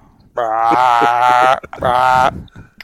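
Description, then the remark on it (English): A person's voice imitates a whitetail buck grunt call in two loud, drawn-out, nasal bursts: a longer one of about a second, a brief pause, then a shorter one. “And he puts his hood on, grabs his grunt call, and gets down on all fours and walks out, crawls out to the bottom of this cut, just hitting his grunt call ridiculous.”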